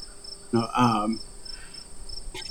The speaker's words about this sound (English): Like, that's three crickets.